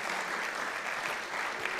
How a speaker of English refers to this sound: Give him a clap. So good. So good.